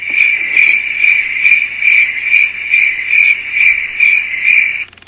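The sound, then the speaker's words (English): Crickets chirp steadily in a fast, pulsing rhythm, a loud, high-pitched trill repeating about twice a second with no voices, then cutting off abruptly at the end. “I'll edit out the boo, and then I'll put in the crickets.”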